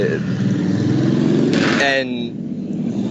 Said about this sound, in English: By the way, don't mind all the traffic. I'm outside, everybody, on my phone again.